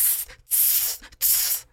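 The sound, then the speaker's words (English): A person hisses like a snake with their voice, making three sharp, loud, breathy bursts separated by brief pauses, with no talking. “She starts hissing like a snake.”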